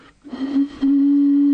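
A breathy blown tone starts with airy rush, wavers briefly, then settles into a steady, pure hooting note held loudly, made by blowing across the mouth of a small plastic bottle.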